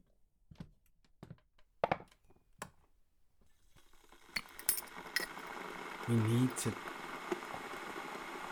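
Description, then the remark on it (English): A few sharp clinks of cups and cutlery, then an electric kettle starts up to make tea at a workplace, its loud rushing, bubbling hiss building steadily, with a brief voice over it. “This kettle is ridiculously loud. Turn it off!”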